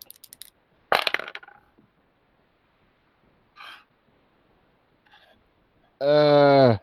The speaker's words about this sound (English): All right. Come on. Come on, dice. Don't let me down.